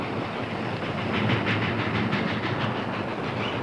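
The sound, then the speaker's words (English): A train, a special bound for Dodge City, picks up speed along the tracks as it nears a curve, with a dense rumble and repeating clickety-clack beats from the wheels. The noise is loud and continuous, with no voices. “It's picking up speed. They're getting near the curve.”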